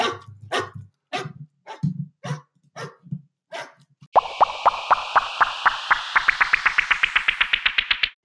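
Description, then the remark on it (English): A dog barks in a steady series of loud barks, then the barking turns into a fast, rapid-fire string of yaps that climb higher in pitch, with no talking. “Should we do an outro or something to this? Like the dog barking?”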